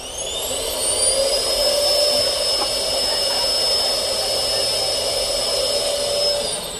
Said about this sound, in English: And so you can not only sit on the potty yourself, but you can also push the button to hear the sound of the suction that they would normally hear on the ISS. Can I push the button for you? Let me push the button. Oh, of course. Flush it for me.